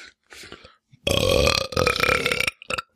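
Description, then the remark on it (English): A long, loud, deliberate belch from the character Belch in the 2017 film It rumbles for over a second, preceded by a few softer breathy sounds and trailing off with a short extra burp at the end. “Here's Belch from It 2017.”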